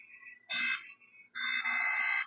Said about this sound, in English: when I first heard it, it really reminded me of those, I don't want to say old fashioned alarm clocks